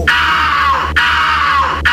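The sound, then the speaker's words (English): Two loud, sustained screams, each nearly a second long, with a brief break between them, shrill and piercing with a steady low hum underneath. “the level of the injury, it should correlate to the amount of the screaming on the sound bite?”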